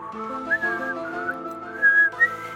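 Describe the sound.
Someone whistles a short theme-tune melody, the tone sliding between steady held notes over a couple of seconds, fairly clear with no talking.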